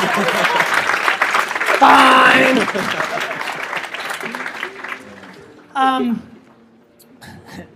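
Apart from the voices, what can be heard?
audience applause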